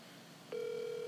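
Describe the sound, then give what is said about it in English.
An outgoing phone call's ringing tone starts about halfway through, a steady electronic hum that holds at a moderate level until the end. Nobody speaks. “Probably, I mean, but it's ringing, so it's pretty.”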